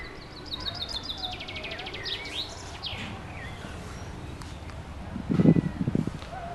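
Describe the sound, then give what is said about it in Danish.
Birds chirp and sing outdoors, with quick trilling calls and repeated high notes in the first few seconds, then a low rustling thump near the end over steady background noise. “Her er nogle af de fugle, som man kunne høre.”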